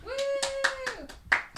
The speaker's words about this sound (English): Why isn't anybody else clapping? Why is only one person clapping?